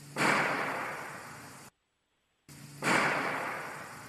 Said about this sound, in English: Right. Let me play the other one. This is another recording of a gunshot sound.